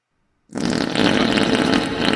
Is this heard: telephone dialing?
no